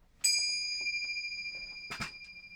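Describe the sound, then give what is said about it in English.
A single bright bell ding strikes sharply and rings on with a long, clear, slowly fading tone, heard alone with faint rustling and a soft thump near the end. “Oh, the bell! The bell! The bell of connectivity.”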